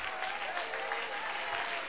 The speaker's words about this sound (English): Come on, give him a Psalms 42. Oh, clap your hands, all you people, and shout unto God with the voice of triumph.